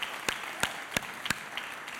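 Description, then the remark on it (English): An audience applauds as a clap offering to the Lord on Christmas Day, with sharp claps landing in a steady rhythm about three per second over a softer bed of scattered clapping. The applause is fairly quiet, and no one speaks. “Come on, somebody give the Lord a clap offering because he's got a new season for you.”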